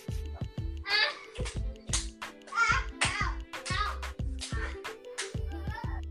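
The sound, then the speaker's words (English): Loud, sharp hand claps, roughly a dozen in quick irregular succession over six seconds, mixed with vocalizing voices between and under the claps. “Did you realize I'm just clapping my hands?”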